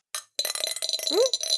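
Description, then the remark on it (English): Dice clattering and rattling across a hard surface: a short burst of clicks, a brief pause, then a longer run of busy, bright tapping and clinking that continues to the end. “All right, give me a roll.”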